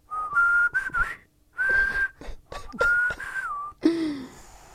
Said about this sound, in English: I'd try and whistle our theme tune. What, like...